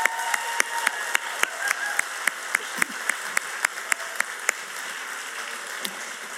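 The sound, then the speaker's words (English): An audience at a Christmas church service at RCL applauds the volunteers steadily for several seconds, a dense wash of many hands clapping with a few sharper, louder claps standing out in a fairly regular rhythm; no one speaks. “Can we give a really warm round of applause?”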